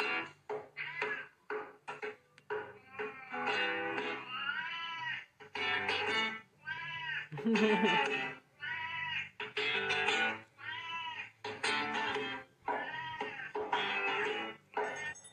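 A cat meows over and over in a long, insistent series of loud, drawn-out cries, some rising and wavering into yowls, with brief pauses between them and no talking.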